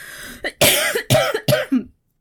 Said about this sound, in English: Again, coughing in the mic.